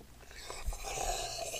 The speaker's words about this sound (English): You're already almost done with your coffee. I can tell by the slurping sound.